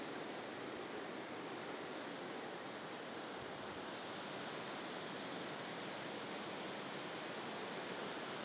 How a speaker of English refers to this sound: It's a breezy afternoon, and you're hearing the gusts of wind blow through the aspen grove. So pretty.